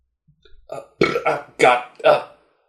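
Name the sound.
burp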